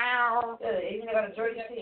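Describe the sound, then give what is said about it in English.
A person imitates a cat, giving a drawn-out meow followed by two shorter meowing calls, fairly loud with no other sounds around. “Meow.”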